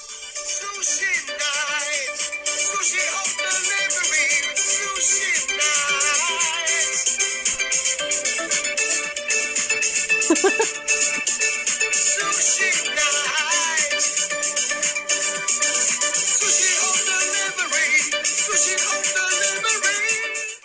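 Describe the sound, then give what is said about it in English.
A catchy sung advertising jingle for Sushi Home Delivery, recorded from a computer into a phone, plays through a small, tinny phone speaker, thin on bass and bright in the upper range, running steadily for about twenty seconds with no one talking over it. “there's so many jingles out there that people do have to sing”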